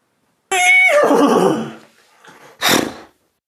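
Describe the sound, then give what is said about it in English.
A person's voice imitates a horse neigh: one loud, quivering whinny that slides downward, then a brief pause and a short breathy snort, with no other talking. “Not a bad limited fake horse.”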